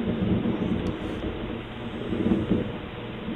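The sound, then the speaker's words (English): Thunder from a lightning strike in Jackson, Tennessee rolls in a deep, continuous rumble, heavy in the low end, swelling slightly at moments but never breaking off, with no voices over it. “This is in Jackson, Tennessee. Was a lightning strike.”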